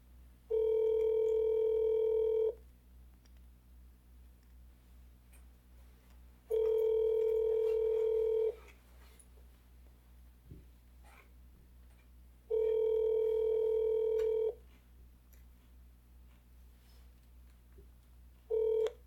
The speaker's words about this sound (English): when I heard the phone ring